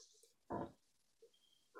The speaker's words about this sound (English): Oh, sorry, I'm yawning.